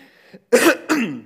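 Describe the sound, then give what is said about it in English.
A fairly loud throat clearing made of two harsh, raspy bursts in quick succession, like a cough, preceded by a brief quiet breath, from a speaker wearing a body microphone. “I'm going to try not to do that this too much this morning, because with a mic that's inseparable from my body, you don't really want to hear me coughing.”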